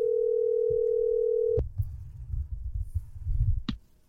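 A single steady ringing tone of an outgoing phone call hums for about a second and a half, then cuts off abruptly, leaving low muffled rumbling and faint handling noise with no one speaking.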